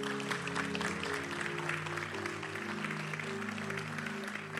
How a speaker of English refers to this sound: Clap for these guys.